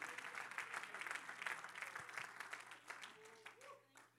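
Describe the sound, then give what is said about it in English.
An audience claps hands unto God in a dense, steady burst of applause that thins and fades toward the end, with scattered voices rising faintly underneath as it dies down. “Come on, if you believe it, clap your hands unto God.”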